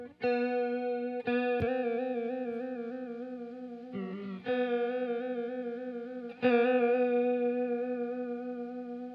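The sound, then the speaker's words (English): Sustained electric guitar notes with a steady, wavering vibrato effect, a few chords struck and left ringing with a warbling pitch, loud, with no talking. “It's a neat vibrato.”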